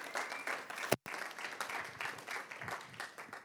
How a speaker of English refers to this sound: Can we give Jesus a round of applause here this morning?